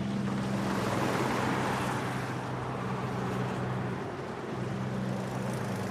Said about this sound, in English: Battlefields are noisy places. First there is the slow rumble of logging trucks on busy roads.